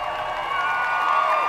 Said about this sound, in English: Crowds of cheering onlookers line the streets, hoping to catch a glimpse of the prince and his American bride.